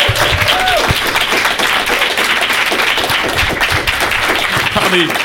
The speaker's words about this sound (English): Well, let's give our awesome panel one loud, proud round of applause.